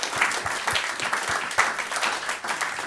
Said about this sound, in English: Thank you. Bill Corbett. A round of applause for Bill Corbett.